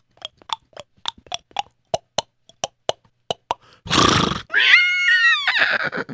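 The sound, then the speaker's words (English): Hoofbeats of horses being slowed down clop in a slowing, uneven rhythm as they arrive in the middle of a marketplace, then a loud breathy snort gives way to a wavering, high-pitched horse whinny. No one speaks. “We're right in the middle. Let's slow down the horses.”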